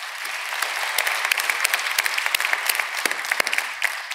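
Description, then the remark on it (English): A crowd applauds the choir in thanks steadily for about four seconds, many hands clapping in a dense, even patter with a few sharper individual claps standing out, and no voices. “I've heard a couple claps. Why don't we thank them?”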